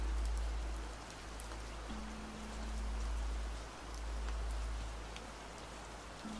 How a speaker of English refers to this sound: And as this storm begins to pass,